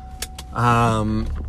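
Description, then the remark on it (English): A couple of quick clicks, then a car engine starts up with a loud, steady mechanical whir that holds for under a second before dropping to a low idle rumble. “Let me start the car.”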